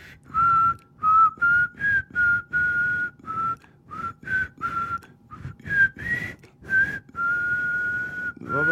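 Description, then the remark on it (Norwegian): A person whistles between the tongue and mouth, a wavering melody: a steady piping tone riding over rhythmic breathy, buzzing pulses that give it an unusual two-part sound, continuing for several seconds without speech. “Du plystrer mellom tunga og...”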